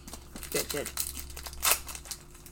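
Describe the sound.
Crinkly foil wrapper sounds with a few sharp tearing bursts as a Pokémon trading card pack is ripped open, with brief low voice murmurs underneath.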